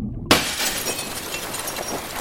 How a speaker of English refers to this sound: It was an accident. The car sank fast. I remember the water coming in.